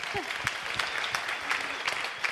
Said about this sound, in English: Let's clap it up for him.